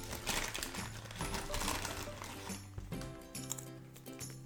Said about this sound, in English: I'm going to really quickly eat a Twiglet.